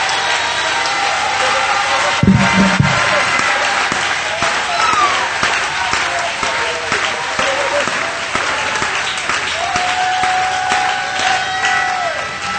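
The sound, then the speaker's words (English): A church audience claps steadily and loudly at the preacher's call to clap and lift up their voices. Scattered cheers and whoops rise over the dense, continuous applause, with one drawn-out high call sustained near the end. “Oh, somebody clap your hands and lift up your voice in the house.”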